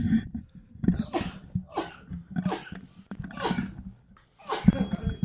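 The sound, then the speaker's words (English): A man sneezes sharply and explosively, four or so times in quick succession, after eating pica limón seasoning, with breathy gasps and a bit of laughter between the sneezes. “Bless you, sir.”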